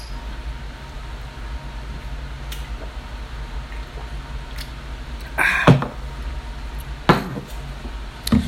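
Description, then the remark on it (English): Shot glasses clink together in a toast before the shots are taken, a brief bright clatter followed by a second sharp tap, over a steady low background rumble with no talking. “We're going to pour some shots here and we're going to take the shot, and then that's officially when we're going to just get this thing going.”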